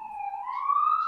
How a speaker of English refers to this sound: We got some sirens. Yeah, this is classic East Van.